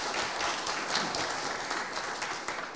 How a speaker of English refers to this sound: Hey, so first of all, thank you for your service. Would you guys join me in giving them a round of applause?